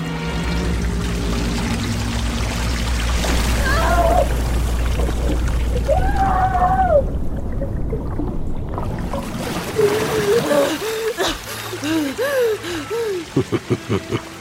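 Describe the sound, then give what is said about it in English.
Water reserves released by pulling a lever gush and pour from pipes in a ceiling in a heavy, roaring torrent with deep rumble, while wavering groan-like tones rise over it; the flow breaks into choppy splashes near the end. “With a pull of this lever, the water reserves come flooding out of the pipes you see in the ceiling.”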